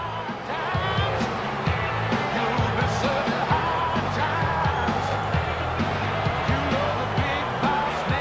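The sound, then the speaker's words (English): A large arena crowd boos the heel wrestler Boss Man loudly and continuously, a dense wall of low, drawn-out voices with scattered yells and whoops rising over it throughout. “They're booing the shit out of him.”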